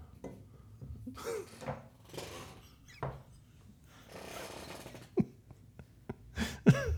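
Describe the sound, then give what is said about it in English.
A chair creaks and rubs in irregular bursts, with a few low, rubbery squeaks near the end that sound like farts. It is moderately loud. “The noise your chair is making sounds like farts.”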